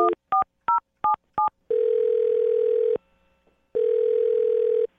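A rapid series of five touch-tone beeps as a phone number is dialed on the radio show Brooke and Jubal in the Morning, followed by a steady ringing tone that stops, pauses, and starts again, clear with no talking.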